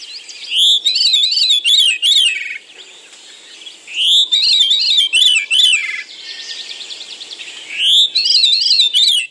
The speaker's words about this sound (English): It's a bird, but let me play you that same file at the correct speed. Listen to this.